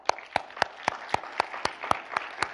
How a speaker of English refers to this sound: Another one, number five, is the taqwa. That means to clap your hands together. Oh, clap your hands, oh ye people. Clap your hands, taqwa.